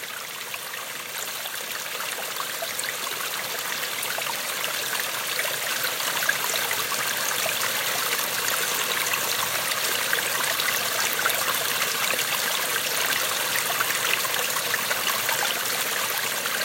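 A mountain stream, the source of a river, flows steadily, its broad rushing babble constant, with bright trickling splashes layered throughout and no voices or other sounds.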